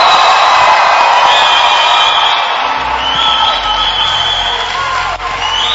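An audience gives the Lord a shout, cheering in a loud, sustained roar of overlapping voices, with whoops and yells rising above the steady crowd noise for several seconds.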